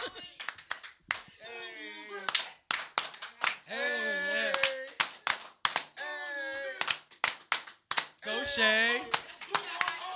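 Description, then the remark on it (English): Sharp hand claps crack out in a loose rhythm, fairly loud, mixed with excited shouting voices between and over the claps. “Oh, he's clapping it up.”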